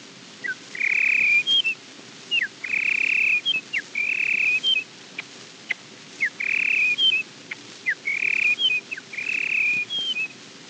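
A red-winged blackbird call repeated about six times, each phrase a quick chirp leading into a sustained, clear whistled note, spaced steadily over a quiet, faintly hissing background.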